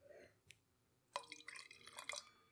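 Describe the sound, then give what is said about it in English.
A drink is poured into a wine glass: a short, quiet splashing stream of liquid lasting about a second, with faint glassy ringing, preceded by a single soft tap. No one speaks. “Yeah, let me pour you some real quick.”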